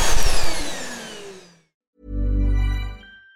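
A loud, whining vacuum cleaner motor winds down with falling pitch, then after a short silence a deep, steady motor hum runs for about a second before cutting off.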